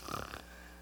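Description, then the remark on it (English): A person imitates a short, rough snore with their voice, a single throaty snort lasting under half a second, followed by quiet room hum. “Let's shut your eyes and let's do a little snoring together, okay?”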